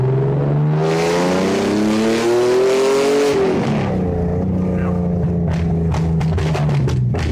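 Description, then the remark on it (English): A TVR Speed Six straight-six engine in a production road car revs loudly, its pitch climbing steadily before dropping back to a rough, burbling idle punctuated by sharp exhaust crackles and pops. No one speaks. “Oh, TVR Speed 6.”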